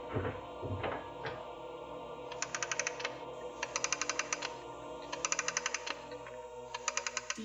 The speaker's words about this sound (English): We've heard the clock wind.